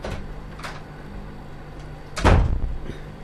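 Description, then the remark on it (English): A door swings open and shuts with a solid thud as a visitor enters a home, preceded by a few faint clicks and shuffles, with no one speaking. “The door's open.”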